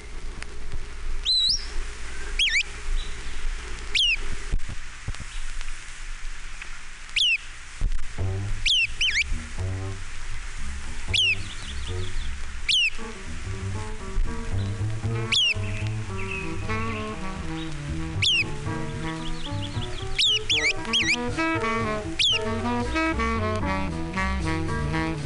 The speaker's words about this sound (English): MacGillivray's Warbler. Eight examples.